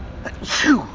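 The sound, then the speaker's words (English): A single sharp sneeze from a person with a cold, with a brief intake of breath before it, bursting out noisily and then fading quickly. “This cold is killing me, record for sneezes and coughs.”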